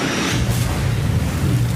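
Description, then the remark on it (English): A loud asteroid impact sound effect of an asteroid about 6 to 7 miles wide striking Earth at 27,000 miles per hour in the Gulf of Mexico: a deep, continuous roaring rumble with heavy low bass and a hissing wash over the top, sustained throughout with no speech. “But one, measuring about 6 to 7 miles wide, collides directly with Earth at 27,000 miles or 43,000 kilometers per hour.”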